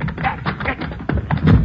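A heavy, thick door thuds shut, followed by a dull low knock as it settles, with scraping and shuffling around it, moderately loud, as people hurry to bolt it.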